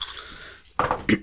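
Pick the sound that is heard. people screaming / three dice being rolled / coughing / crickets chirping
three dice being rolled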